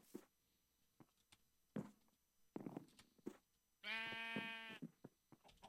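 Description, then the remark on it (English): A single loud sheep bleat from a sheep standing in the way, with a wavering, harmonic-rich tone, preceded by scattered soft clicks and thumps like footsteps or light movement. “There's a sheep in my way.”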